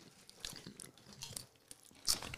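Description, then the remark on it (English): Crunching of potato chips on a microphone, several crisp bites with brittle crackling bursts, the loudest near the end, with no talking. “He's got a good crunch on Mike.”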